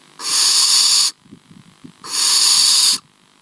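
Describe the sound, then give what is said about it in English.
Two long, loud breathy hisses, each lasting about a second, from young barn owls in the nest, with a soft rasping snore-like pause between them; clear with no talking. “It sounds like snoring or hissing, which is the call of young barnacles.”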